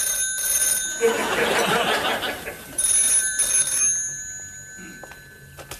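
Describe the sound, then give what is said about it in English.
A snooker switchboard telephone rings with a steady, shrill bell tone that carries through the whole stretch, briefly joined by a louder burst of rustling noise near the start. “the phone calls from the wrong numbers and the BBC”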